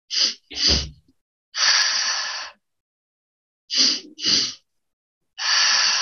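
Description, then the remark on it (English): A breathwork pattern of two quick, sharp nasal sniffs, one into the belly and one into the chest, followed by a longer, steady whooshing exhale through the mouth, performed twice in a row with no talking. “This is going to be two inhales with one exhale.”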